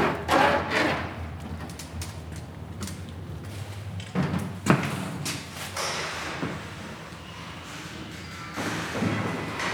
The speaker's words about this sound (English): I'm walking up to the enormous red brick building now, one which, 100 years ago, was likely a factory. And you can still hear that history in the door hinges.